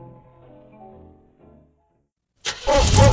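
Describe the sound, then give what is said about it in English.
Faint tonal music fades into a second of silence, then the V8 engine of a 1955 GMC pickup truck, rated 155 horsepower when new, cranks and bursts to life, loud, settling into a rough, rumbling run. “1955 GMC pickup truck with my stumpy tail healer, Gunner.”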